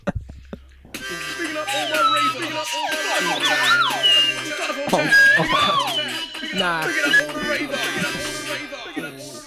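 Shrill whistle blasts with sliding, siren-like pitch ring out repeatedly over a dense, buzzing wash of layered tones, loud and continuous for the whole stretch.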